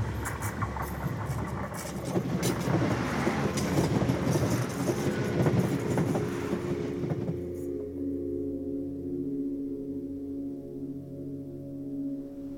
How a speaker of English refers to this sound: Oh, here we've got the train coming back. Okay, great.